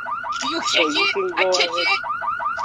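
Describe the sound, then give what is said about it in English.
A car alarm, set off by someone kicking the car, blares in rapid, repeating rising chirps at a steady rhythm, loud throughout, while people talk over it in the middle. “Ah, I kicked the car.”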